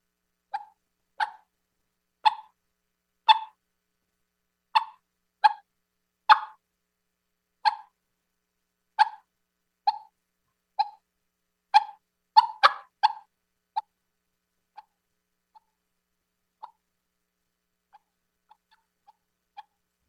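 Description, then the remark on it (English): Hen turkey contact clucks made on a DOD Signature Series ghost tongue mouth call, tone varied by hand and mouth position: a steady series of sharp, hollow single clucks about a second apart, some doubled, then a few fainter, sparser clucks trailing off. No talking. “And I'll just start, you know, kind of on the lower end, like just a simple, you know, contact cluck.”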